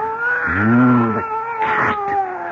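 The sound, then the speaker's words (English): A fat, sleek cat lets out a drawn-out, wavering yowl at night, followed by a couple of shorter, rougher cries, all set against a steady low droning background. “I'd almost forgotten his fat, sleek cat.”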